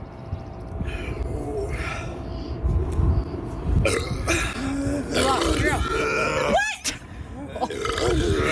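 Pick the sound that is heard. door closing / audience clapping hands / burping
burping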